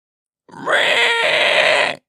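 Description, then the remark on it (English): The pig Napoleon, standing up in the barn just before a vote, lets out a single high-pitched whimper that lasts about a second and a half. It starts with a quick upward slide, then holds steady as a loud, strained, nasal cry with no speech. “But just at this moment, Napoleon stood up, and, casting a peculiar sidelong look at Snowball, uttered a high-pitched whimper of a kind nobody had ever heard him utter before.”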